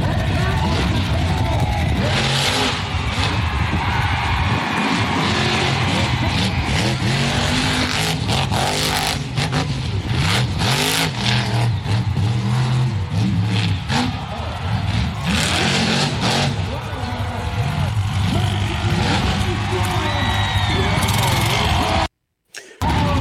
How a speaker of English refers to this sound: see some of the most badass monster trucks throughout the Southwest and Midwest compete for glory.